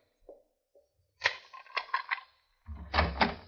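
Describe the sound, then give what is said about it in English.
A door to a room at the end of an upstairs hall is opened: a couple of faint early clicks, then a rattling of the latch and handle, followed by a heavier thudding swing with a low rumble. No one speaks. “Open the door, Teal.”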